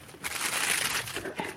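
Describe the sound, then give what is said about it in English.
A crisp packet, litter being picked up from a wooded footpath, being crumpled: a bright, crackling rustle of brittle plastic that swells steadily for about a second, then breaks into a few sharper crinkles before fading. “We've got a crisp packet.”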